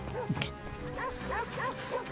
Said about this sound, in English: Oh wow, these dogs are vicious. Do you think any kids got hurt? Maimed during this? Set of Goosebumps? I mean, I don't know if these dogs know when to stop.